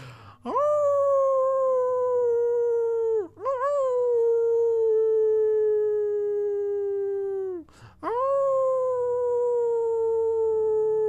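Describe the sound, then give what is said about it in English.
People howling like wolves: three long, loud howls, each swooping up and then sliding slowly down, following one after another with only brief breaths between them. “You feel the energy moving through you as your howls ripple out through the land, heard all across the dream, encoding your intentions deeply within it.”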